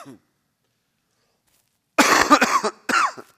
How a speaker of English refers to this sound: I don't normally do that, but the cough ain't going away.